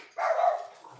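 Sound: dogs barking excitedly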